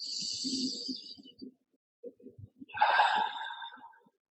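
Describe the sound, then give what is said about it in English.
A deep breath drawn in with an airy hiss, a brief pause, then a long, loud, rushing exhale, taken as part of a guided deep-breathing exercise. No one speaks. “Let us finish with three deep breaths together.”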